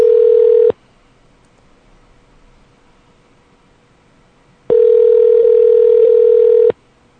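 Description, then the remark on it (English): An outgoing Skype call rings unanswered: a steady electronic ringback tone sounds briefly, pauses for about four seconds, then rings again for two seconds, loud and clear with no voices. “Okay, well, Devin is not picking up the phone.”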